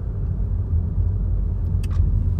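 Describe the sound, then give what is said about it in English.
A car drives at night on an island: steady low rumble, engine droning beneath continuous road noise, with a couple of brief higher-pitched squeaks near the end. No one speaks. “I should focus on the road because I'm still new to this islands, and I need to study signs, and I need to listen to my navigation system.”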